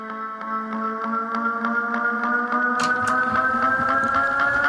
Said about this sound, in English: What is that, the theremin? What was it? Well, I don't know what the hell that is. It's just a very twangy guitar. Yeah, it's a guitar. It's a guitar.